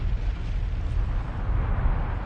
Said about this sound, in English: Then, on March 23, the volcano exploded. The volcano shot out melted rock called lava.